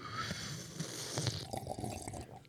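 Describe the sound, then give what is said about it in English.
A short, wet slurp of coffee being sipped, a hissy airy draw lasting about a second followed by a few soft gulping clicks and quiet mouth sounds. “That was a slurp.”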